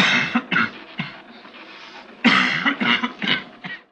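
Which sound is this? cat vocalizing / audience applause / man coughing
man coughing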